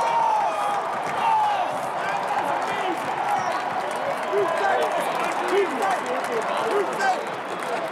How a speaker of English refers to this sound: But it looks like there might be a challenge. You can hear this crowd.